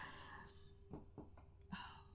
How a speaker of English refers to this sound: Sorry. We're both just over here yawning. Yawning. Happy Monday. Staring at each other. Everybody yawn with us. We're tired.